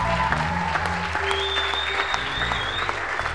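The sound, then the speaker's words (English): A crowd applauds steadily, many hands clapping in a dense, continuous patter, with a sustained musical tone and low instrumental notes underneath. “Some of you are clapping, need to raise your hands.”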